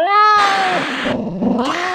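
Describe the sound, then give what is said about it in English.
A cat, one of several in the house, meows loudly, one long drawn-out yowl that bends in pitch and continues for about two seconds, with no talking. “Come on, Wishmaster, you have a bunch of cat monsters running around in here.”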